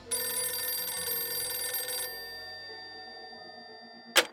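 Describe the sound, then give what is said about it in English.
An old-fashioned home telephone bell rings loudly for about two seconds, its metallic jangle fading into a lingering hum, followed by a sharp click like a receiver being picked up. “Somehow, McElroy got the Clements' home phone number and began a series of harassing calls.”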